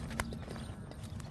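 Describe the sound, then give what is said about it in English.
A small five-year-old yellow Palomino mare walks with hooves clip-clopping in a steady rhythm, several sharp strikes over a low background rumble, with no talking. “She's a little Palomino mare.”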